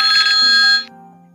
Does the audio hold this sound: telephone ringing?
yes